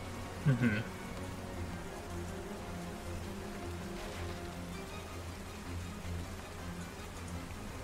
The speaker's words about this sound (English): Oh, it's raining. I don't even like need spell components for Spirit Armor. I can just use the rain.